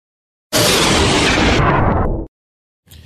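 A power failure bang: a sudden, very loud explosive burst that roars harshly across the whole range for nearly two seconds, then cuts off abruptly into silence before a faint noise returns.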